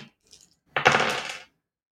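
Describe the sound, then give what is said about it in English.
A handful of dice clatters across a hard table in one dense, rattling burst lasting under a second, preceded by a couple of faint taps, with no voices. “Let me get all these dice. I have so many of these.”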